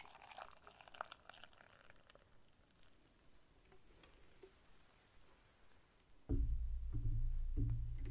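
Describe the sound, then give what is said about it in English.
Hot water from an already boiled kettle pours steadily and loudly into a cup for the last couple of seconds, after a stretch of faint hiss and small clicks. “Brought up a kettle already boiled.”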